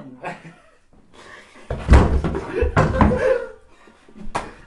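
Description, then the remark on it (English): A chair back snaps off and hits hard, a loud wooden crack and clatter followed by a second heavy bang, with faint voices and a bit of laughter around it. “No, the fucking back of the chair came off.”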